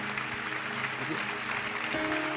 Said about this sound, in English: I'm happy you are still clapping.